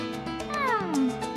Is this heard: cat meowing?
yes